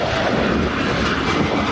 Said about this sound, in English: Gliding over the clouds on a plane, the sun glows red over the horizon. This was the first sunrise of 2021, viewable only from high up in the sky.